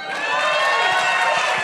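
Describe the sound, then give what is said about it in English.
A live show audience cheers loudly and steadily for Michael, a dense wash of many voices whooping and shouting together that holds at full strength for the whole moment without any single speaker breaking through. “All right, everybody, another big cheer for Michael.”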